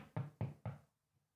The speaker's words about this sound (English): Hey, it's me, the knocking guy. Hey, it's the knock freak.